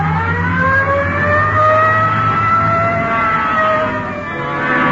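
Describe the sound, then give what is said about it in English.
A police patrol car's siren wails steadily in rising and falling sweeps while its engine roars and accelerates underneath, loud, with no voices, as it responds Code 3 with lights to a 211 shooting call at the corner of Hill and Geneva Alley. “Code 3. Hit the light. Yeah, come on. Let's roll.”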